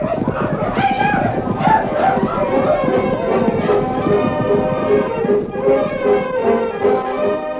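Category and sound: animal, horses galloping away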